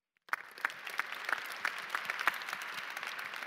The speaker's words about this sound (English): Sorry, I stepped in your applause.